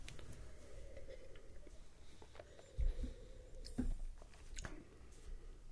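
Quiet mouth sounds of someone sipping a brown-ale-style beer with coffee notes during a tasting: a few soft slurps and wet smacks, with a slightly louder pair of sips near the middle, and no talking.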